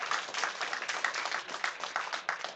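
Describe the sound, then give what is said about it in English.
A church audience claps steadily during a sermon for a couple of seconds, many hands making a dense, crackling patter that holds an even, moderate level throughout with no voices standing out. “Yeah, you can clap on that.”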